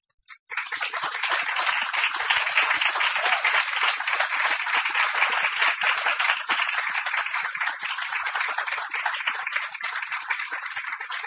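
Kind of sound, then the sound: crowd, audience applause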